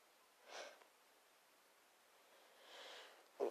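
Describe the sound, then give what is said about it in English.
Two soft, drawn-out breathy inhales build up, followed by a short, sharp sneeze burst right at the end, faint, with no talking. “Oh, wait, I gotta sneeze.”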